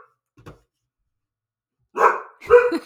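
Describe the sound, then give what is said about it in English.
A female dog barks twice in close succession, loud, at a mailman at the door, after a faint brief thump and a stretch of near silence; no one speaks. “She's doing her dog duty. There's a mailman who's at the door. And I'm just going to let her bark.”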